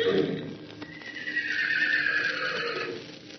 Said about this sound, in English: And he lifted up his voice and called to them the long, bugling neigh of his kindred.